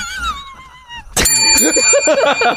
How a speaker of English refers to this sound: Okay. The double bell.